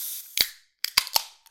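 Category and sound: food or drink, beer cans cracked open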